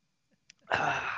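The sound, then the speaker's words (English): A brief catch of breath, then one loud sneeze bursts out abruptly as a harsh, breathy blast that lingers for a moment. No talking. “Excuse me. Sneeze.”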